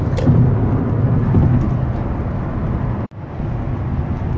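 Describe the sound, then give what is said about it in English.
A steady rumble of a tailgating car on the road, which passes after the driver ahead pulls to the side. Low engine and tire noise cuts out for a brief moment near the end before resuming. “There was this car I was driving on my ass.”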